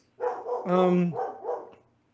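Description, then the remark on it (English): A female dog barks at a FedEx delivery person outside the door, several times in quick succession, with one longer, drawn-out bark in the middle and shorter, softer barks trailing off after it. “Because she has not stopped barking, so that means there's something else.”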